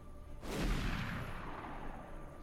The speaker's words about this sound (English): You are staring down the scope of your sniper rifle, waiting for that moment when the gunfire starts. And the second it does, you squeeze the trigger and a shot goes off.